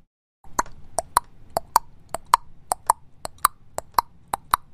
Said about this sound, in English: The sound of horse hooves.